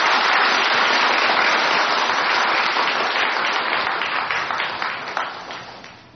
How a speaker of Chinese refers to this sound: 现在我们以最虔诚的心呢，恭请呢我们的师父开始。现在我们鼓掌。